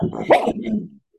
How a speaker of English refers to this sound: Sorry, the window cleaner is outside and Pip's having a meltdown. Pippi, shush. Hey, buddy. Everyone wants to hear you barking.